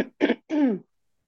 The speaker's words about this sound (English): And this can be edited, I guess. Sorry, I need to clear my throat.